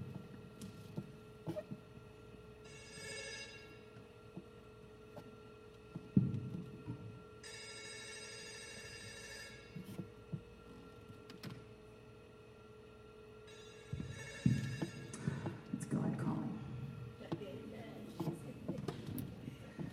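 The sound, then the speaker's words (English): A cell phone rings in three separate bursts of bright, buzzy electronic tones, each lasting a couple of seconds, with muffled rustling and low background noise between them. “Cell phone, you know, and your cell phone rings, you put it in your purse, you pull it in your pocket, and you're like, oh.”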